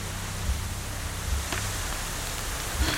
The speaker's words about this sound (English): it's starting to rain. Damn it. The rain's gonna put out the fire.